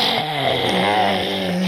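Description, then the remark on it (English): A raspy, wheezing growl held steadily for under two seconds, fairly loud, with a rough rattling tone, like a voice imitating a hoarse, emphysemic coyote snarl. “The emphysemic coyote.”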